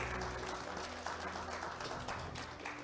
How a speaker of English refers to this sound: If this is your first time, we want to welcome you. Everybody just give a hand clap and welcome all our first time people. Let them know that they're loved.